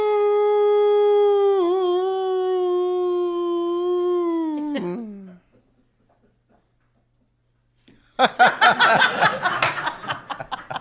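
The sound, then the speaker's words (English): A voice imitating a whale call lets out a long, sustained wooo, held steady for several seconds before sliding down and cutting off, then after a pause, laughter breaks out. “And one whale looks over at the other one and goes, "Woo."”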